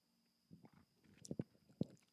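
Someone takes a sip of a cold drink: quiet mouth noises build into a few soft, wet gulps and swallows, with no talking.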